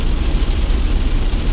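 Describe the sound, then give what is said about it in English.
Heavy rain pours down outdoors in a steady, dense roar, a thick low rumble with a constant hiss on top and no letup or change in loudness. No one speaks. “Damn, it's raining harder than a bitch out here.”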